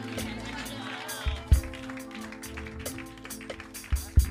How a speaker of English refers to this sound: Clap those hands and give God some praise. Clap those hands and give God. Everybody shout.